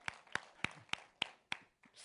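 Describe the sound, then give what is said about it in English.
One person claps six times in a steady, evenly spaced rhythm, each clap a sharp, crisp slap, with no other voices or sounds alongside. “Just, I'll clap for it.”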